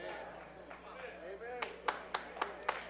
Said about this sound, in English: Oh, you don't have to clap at this message. It's hardcore.